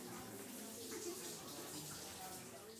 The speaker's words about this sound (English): Everyone feels the need to shower at the same time. Hey, it's my turn.